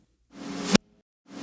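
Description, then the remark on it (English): A reversed snare drum hit, made by reversing an isolated snare hit, swells up as a hissy, rising rush and snaps off abruptly, followed by a short silence before a second swell begins. It plays alone, fairly loud. “You take an isolated snare hit to get this sound, so an isolated snare drum will sound like this.”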